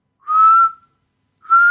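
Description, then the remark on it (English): A person whistles two shrill, steady blasts with a pause between, mimicking a trench whistle signalling soldiers to charge from the trenches in a war. The tones are loud and piercing, with no talking. “He's like doing the whistle.”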